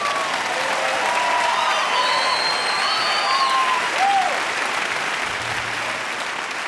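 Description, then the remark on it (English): A crowd applauds steadily for several seconds, a dense, loud wash of clapping with a few high whistles cutting through, tapering slightly at the end. “Now you're going to introduce me so they can clap like they mean it?”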